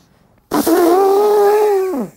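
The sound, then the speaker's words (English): A person imitates an elephant's trumpet with one loud, sustained, buzzy vocal blast about a second and a half long, holding a steady pitch before sliding downward at the end. “What sound do an elephant make?”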